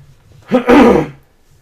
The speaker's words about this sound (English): I had some spit go down the wrong tube.